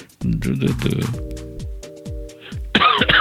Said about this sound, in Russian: Блин, перестану я кашлять или нет сегодня? Да, перестань. Как только нажмем стоп записи, сразу перестанешь. Ты же от смущения кашляешь.